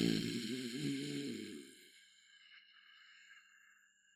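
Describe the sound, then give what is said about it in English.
A person voices a deep, rough, exaggerated growl that rumbles for about two seconds and then stops, leaving a faint steady hiss behind. “He said the only other time I'd ever made that noise was when I was playing with a dog and trying to, like, goad it on, like an exaggerated growl noise.”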